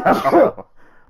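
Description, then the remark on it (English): A single loud sneeze, a harsh voiced burst lasting about half a second with a short tail, followed by a faint breathy rustle and then quiet. “Bless you.”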